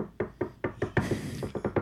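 A quick run of about ten knocks on wood, hollow and fairly loud, tapped out in an uneven rhythm with no talking.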